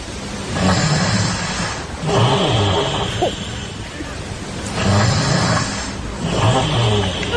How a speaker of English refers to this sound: This is the way she snores.